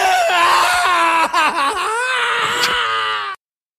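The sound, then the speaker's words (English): A loud, sustained agonized scream from a video game character who is burning, wavering and strained in pitch for about three seconds before cutting off abruptly, with no talking over it. “But when it's a computer-created nobody, and he screams like this...”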